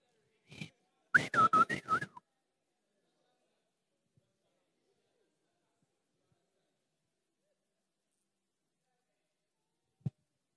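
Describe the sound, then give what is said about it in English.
A person standing behind a wall whistles a short signal to a girl inside a house: a quick opening note, then a breathy, warbling run of pitches lasting about a second. Long silence follows, broken only by a faint click near the end. “Some of them, they used to stand behind a wall. Then they'll whistle.”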